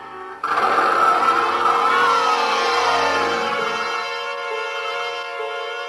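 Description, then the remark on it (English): A milk truck engine suddenly kicks on and revs with a loud, whining drone, then settles into a steady, slightly fading hum as the truck drives off. No voices. “The light at the other end turned out to be a milk truck without a driver. All of a sudden, nobody had to tell me what to do. I got in and I drove off.”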